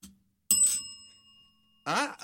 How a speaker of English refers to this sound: Every time you hear a bell ring, it means that some angel's just got his wings.